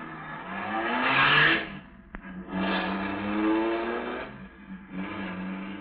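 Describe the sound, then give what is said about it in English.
A big car engine roars and revs, its pitch climbing in several loud surges with brief dips between, as the car is driven away down a driveway. No one speaks. “At the moment that she's sending the big car roaring down the driveway,”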